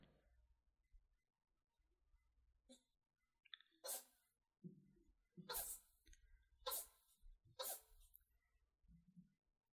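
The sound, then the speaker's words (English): A cat sneezes about four times in quick, irregular succession, each sneeze a sharp, breathy burst, with small snuffling sounds in between and a low background hum. “my cat is sneezing.”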